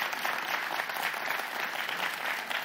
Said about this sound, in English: So let's express our gratitude and our appreciation. We clap, yeah.